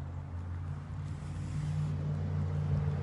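Steady outdoor ambience at a lake: a constant low rumble like a boat engine beneath a soft wash of wind and water, with no voices and no sharp events.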